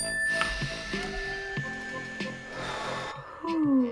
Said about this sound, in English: Let's do a mindfulness breath real fast, just to keep ourselves grounded in the moment here. Ready, everybody? Just take a deep breath when you hear the bell.